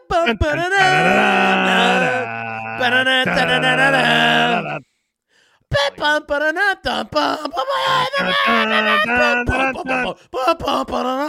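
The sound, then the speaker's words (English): Voices loudly sing an intro theme song wordlessly on "da-da-da" syllables, a bit rough and off-key, with sustained held notes, a brief pause near the middle, then the singing picks up again. “Hey, that's our goal every week, is to just murder these intro songs with da-da-da's.”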